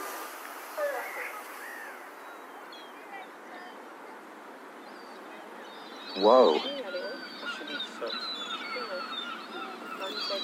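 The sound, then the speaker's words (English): Swans fight on the water in Dorset on a beautiful day: a sudden loud burst of harsh honking and commotion partway through, then lingering splashy noise against a steady outdoor background, with a brief exclamation from a person. “These swans are about to have a fight.”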